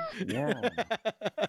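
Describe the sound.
A person does a drawn-out, meow-like vocal imitation with a rising and falling pitch, then breaks into a quick run of rhythmic chuckles.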